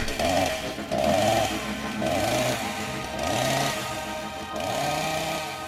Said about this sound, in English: Welcome back, everyone, from the chainsaw noise.